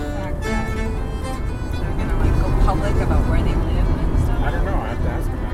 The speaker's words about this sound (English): That's my daughter behind the wheel of her car. She's driving us across the green and lush Swedish countryside.